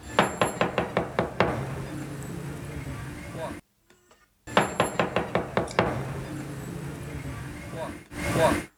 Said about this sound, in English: So you think it might be like... actually knocking on a door in Stockport somewhere.